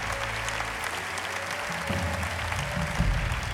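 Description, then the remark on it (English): An audience claps hands steadily, a dense wash of many hands at an even loudness, with a low hum and faint murmuring underneath. “Let's clap our hands.”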